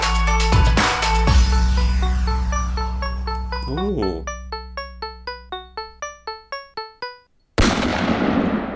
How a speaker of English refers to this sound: Gunshot ending. Classic gunshot ending. Gotta yeah. have a gunshot ending. Gotta have a gunshot ending.